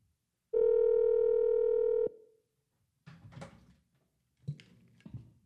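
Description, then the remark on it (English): A single loud, steady telephone ringing tone as a call is placed from a phone rings out for about a second and a half, then stops, followed by a few soft clicks and rustles of the phone being handled. No one speaks. “I think I can actually get her on the phone.”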